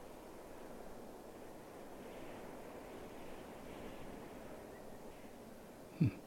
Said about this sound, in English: Canyon. Starting canyon sounds. Here we go. Windy, maybe?